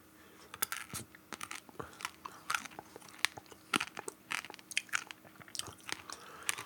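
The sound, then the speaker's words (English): Crunching of a chocolate-covered espresso bean being eaten, a rapid, irregular series of sharp, crackly bites and chews lasting several seconds with no talking. “I'm going to eat this chocolate-covered espresso bean and then consume the a stout with coffee and see what happens.”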